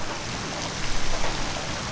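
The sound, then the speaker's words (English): Heavy rain pours down in the town of Tuléar in a steady, dense hiss that fills the background, with a few louder patters swelling briefly in the middle. No voices. “On a day of heavy rain, we made our way to the workshop of a crucial player in the Tzapik scene”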